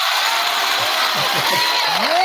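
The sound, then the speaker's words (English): Steady, dense applause from a crowd welcoming former Pittsburgh great Roy Gerela, a loud wash of many hands clapping at once with no pauses, and a few faint rising whistle-like tones near the end. “Get the applause.”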